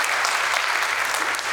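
A church crowd claps steadily in a dense, sustained wash of many hands, loud and even throughout with no voices standing out, applauding a woman invited up to tell her story.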